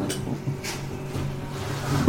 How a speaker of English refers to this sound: Sorry, a mower has just started next door, so hopefully that's not too loud.